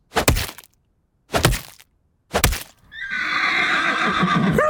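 Three sharp, loud whip cracks ring out one after another with short pauses between, followed by a horse's long, shrill whinny that carries on to the end. No one speaks.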